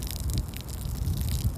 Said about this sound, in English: because I'm about to go pee in the wind right now. Gotta make sure I pee the correct way. Wait, let me just set the phone down. Let me just do it right now.